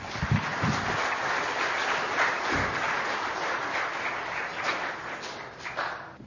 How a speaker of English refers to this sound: So let's give him a big round of applause as well.